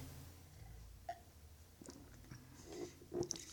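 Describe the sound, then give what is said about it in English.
Quiet sipping of an I Choose You New England style IPA beer from Evil Genius in Philadelphia, Pennsylvania: a few soft slurping and swallowing mouth sounds, with a small gulp near the end and no talking. “I'm going to take another sip here, actually.”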